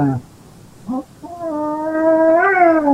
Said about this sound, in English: Or was that the cat? Is that the cat?